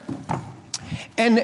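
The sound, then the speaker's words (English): A chair is shifted with a couple of short wooden knocks and scuffs as it is set down, followed by a voice speaking. “I mean, I can illustrate this simply with the chair here, for example. Okay, so we have a chair.”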